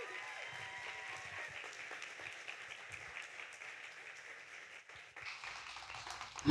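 A crowd applauds steadily, a dense, even patter of many hands clapping that holds for several seconds, dips briefly near the end, then swells again.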